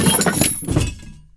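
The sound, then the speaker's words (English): A loud crash as a table holding scientific equipment topples to the ground after someone lands on it, followed by breaking and clattering of glassy equipment, with debris settling and fading out over about a second. “The table holding the equipment crashed to the ground.”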